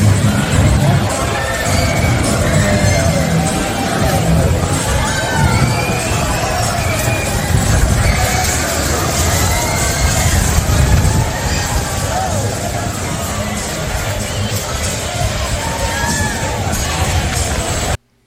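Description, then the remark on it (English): A large baseball stadium crowd in the Twin Cities roars in reaction to rain starting, before the top of the eighth inning of a game against the Giants: a loud, sustained wash of many voices with rising shouts and cries that holds steady for the full eighteen seconds. “That was the people, the fine people of the Twin Cities, reacting as if they had never seen rain before.”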